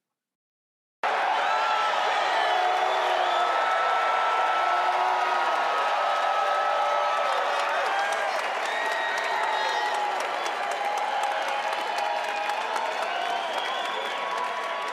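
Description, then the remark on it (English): A large concert crowd cheers and applauds steadily after a moment of silence, with shouting voices and whoops over a dense wash of noise, and sharper hand claps becoming more distinct toward the end. “Okay, straight up, that's a way bigger crowd than Biden got.”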